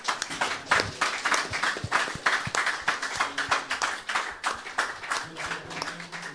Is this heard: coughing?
no